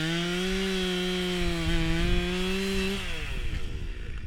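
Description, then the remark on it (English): A large motorized jackhammer pounds stakes into a muddy stream bed, roaring loudly with a steady engine drone and rapid rattling, its pitch dropping off toward the end. No one speaks. “They're pounding stakes into a muddy stream bed using a large jackhammer and gathering sagebrush and branches to weave between the stakes.”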